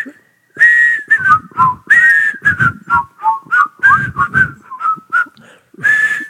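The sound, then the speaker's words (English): A person whistles a TV theme song, a bouncy, tuneful melody with notes in quick phrases and brief pauses, steady and clear for several seconds with no talking. “Can you whistle the song?”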